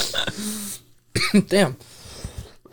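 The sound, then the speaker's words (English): A couple of harsh coughs in quick succession, rough and throaty, after a brief noisy stretch and a short pause, with muffled vocal sounds trailing off afterward. “All these parts of us coughing, you have to cut out.”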